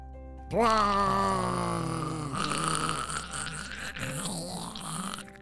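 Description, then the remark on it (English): A drawn-out, loud vocal sound imitating gummy bears melting all over a neighborhood: a groaning, wobbly tone that slides downward, then turns into a rougher, gurgling squelch for several seconds. “The sound of gummy bears starting to melt all over the neighborhood was very noisy.”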